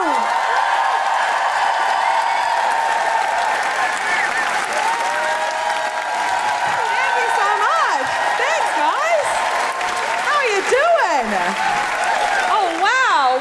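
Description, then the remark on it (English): Loud, sustained applause from a large crowd welcoming the comedian Rose Mattafeo, with dense clapping throughout and bursts of whooping and cheering rising above it, steady for the whole stretch without pause. “So put your hands together and make extraordinary guilty feminist Amnesty welcoming noises for the wonderful Rose Mattafeo!”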